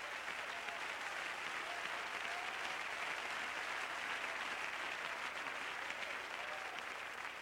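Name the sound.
audience clapping hands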